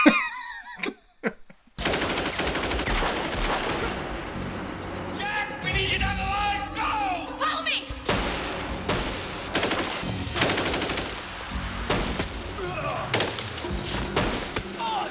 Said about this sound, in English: These fucking trancer guys come running in with machine guns, and Jack's like, bang, bang, bang, bang.